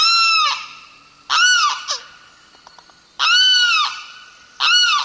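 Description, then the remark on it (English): A male limpkin, a tall dark brown bird streaked with white, gives loud, wailing screams with strong harmonics before dawn on a spring day in the Big Cypress Swamp, Florida: four drawn-out calls in an uneven rhythm, with quieter chirps and clicks in the pauses between them, clear. “A male limpkin has awakened. This relatively tall bird, whose dark brown feathers are streaked with white, stretches and calls again.”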